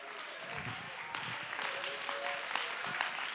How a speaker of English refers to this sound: Oh, let's clap our hands and give God the praise.